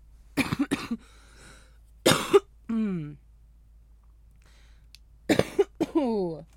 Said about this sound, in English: Oh, my allergies, I think, have been a little fucked up. So, like, I've been coughing extra every time I smoke now. It sucks.